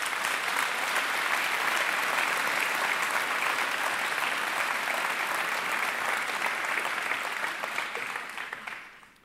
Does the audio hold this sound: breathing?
no